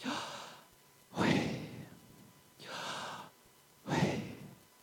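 Slow, deliberate breaths with no talking, made to demonstrate the sound of the name Yahweh: four long airy breaths alternate between inhale and exhale in a steady rhythm, with the exhales louder and fuller.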